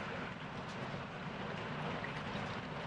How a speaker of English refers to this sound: It doesn't matter if it's raining hard on the roof. I can get rid of it.